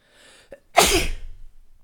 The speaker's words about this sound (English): Finally, I sneezed. I'm gonna die. I feel so sick. I feel so much worse.